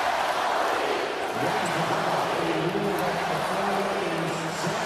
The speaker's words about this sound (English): Crowd starts into Let's Go Heat.